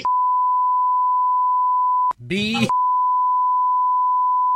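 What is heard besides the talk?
electronic beeping tones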